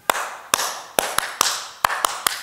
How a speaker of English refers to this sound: And at the end of that worship song, it usually followed some clapping, which went a little bit like this.